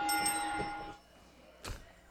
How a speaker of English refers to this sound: I wanted to ring the bell so bad.